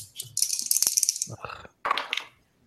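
Dice rattle in a bright, dense clatter for about half a second, followed by a couple of shorter knocking tumbles as they settle, fairly quiet overall.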